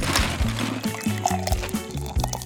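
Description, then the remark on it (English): Lemonade pours steadily into a cup, a continuous gurgling stream with a pitch that shifts as the cup fills, lasting a couple of seconds; a kid selling lemonade pours a cup for a customer. “How about you pour me a cup, kid?”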